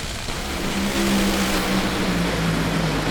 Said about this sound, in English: Torrance smokes the tires. McMillan's trying to catch him, blows him up in the process, and Torrance wins the drag race. 4.273 seconds at 2:24. Torrance wins on a technical hole shot with a big starting line advantage.